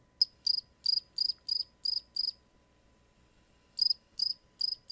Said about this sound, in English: Exactly, crickets.